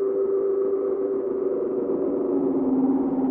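A steady modular synthesizer feedback patch drone, taken from the C output of a crossfade array that mixes both outputs, hums with layered, slightly wavering tones that drift and shift in pitch, sustained at a constant moderate level with no talking.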